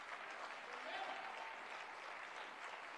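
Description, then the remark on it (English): An audience claps hands together in a steady, dense wash of applause that holds at an even loudness for about three seconds, with faint voices mixed underneath. “You're going to clap your hands.”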